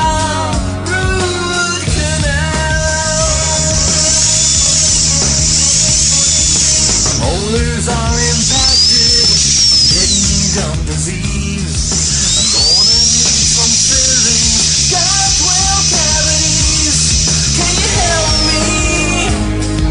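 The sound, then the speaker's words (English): A dentist's drill whirs loudly, its high-pitched whine repeatedly rising and falling over a constant buzzing drone for about twenty seconds, with no one speaking. “I kind of get, white knuckles when I think about, the dental experience. This is it.”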